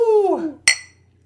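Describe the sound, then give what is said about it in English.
A single bright clink of glasses touching in a toast while drinking beer, ringing briefly with high overtones before fading, preceded by a short voiced sound that slides downward in pitch. “If it's a nice weeknight and you're imbibing with us, then cheer, say the magic words.”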